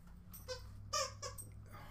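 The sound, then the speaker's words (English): A puppy chews a squeaky dog toy in a quick, irregular series of high-pitched squeaks, several short bursts with one louder squeal in the middle, over a low steady background hum. “Oh, he grabs something out of another noisy toy.”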